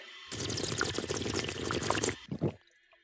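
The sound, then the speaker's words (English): Water from a drinking fountain runs in a steady stream for about two seconds, then breaks into a few short splashing spurts before cutting off. No one speaks. “Oh, I never should have told you about this fountain.”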